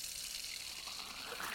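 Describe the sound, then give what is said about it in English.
A steady rush of running water, hissy and crackling like newspaper or wrapping paper being crumpled, as first heard through a newly switched-on auditory brainstem implant, continuing unbroken for a second and a half with no voices. “At first, it just sounded like water running, sounded like somebody smashing up newspaper or wrapping paper.”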